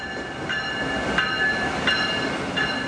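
A train rumbles steadily through a station, with a rhythmic clack repeating roughly every 0.7 seconds and a faint, high metallic whine running over the steady rolling noise. No one speaks.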